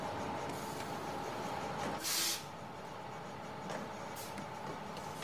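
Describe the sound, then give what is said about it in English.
The Arnesen bus to Braunstein idles with a steady engine drone and low rumble as it is boarded, broken by a short, loud burst of hissing air, then fainter hisses and clunks as the doors work. No one speaks. “I'm just about to board the Arnesen bus.”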